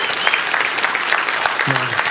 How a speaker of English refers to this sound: If you know that truth to be true, if you know it to be real in your life, that you need nothing else but Jesus, I want you to give Jesus a big round of applause right now.